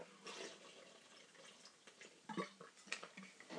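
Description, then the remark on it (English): Someone sips and drinks water close to the mic: soft, wet slurping noises broken by a few sharper gulps and clicks, with no talking. “Excuse me, I'm going to have some more water here. I won't drink it directly into the mic.”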